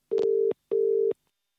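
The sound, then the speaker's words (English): A telephone ringing tone of a call to a Manchester studio engineer and producer: two short, steady electronic beeps in quick succession, the double-ring pattern heard while the call waits to connect, clear and alone with no talking. “On the end of this phone call is”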